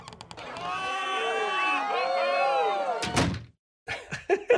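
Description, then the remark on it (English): Winter outdoor ambience heard through an opened door fills the first few seconds, with many overlapping high chirping calls, until a solid door thunk cuts it off. A brief silence follows, then a few scattered knocks and rustles. “Well, open your door just for a second. I want to hear what it sounds like out there.”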